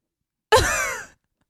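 A single short, breathy yawn right up close to the microphone, voiced with a sliding pitch and trailing off after about half a second, with silence before and after.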